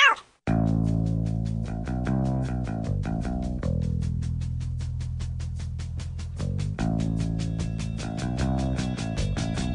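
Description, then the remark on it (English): A dense chorus of cats meowing and yowling together, loud and continuous for several seconds, with overlapping drawn-out cries and no one speaking. “Hey, where'd all these cats come from?”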